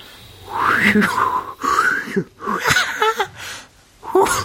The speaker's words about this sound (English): I'm sorry, I'm sneezing. Those were my sneezes, if you've never heard them before. The funniest sneezes I've ever heard of.